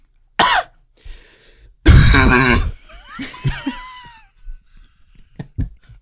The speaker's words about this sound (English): I can cough like a man, though. I can cough deep from inside my lung.